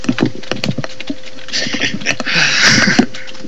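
A man types on a keyboard: rapid, irregular clicking of keys, a steady flurry of light taps with a faint hum and a brief swell of hiss in the middle.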